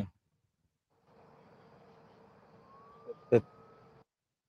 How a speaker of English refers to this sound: That's a siren. No, I hear the siren. Yeah, I hear the background noise.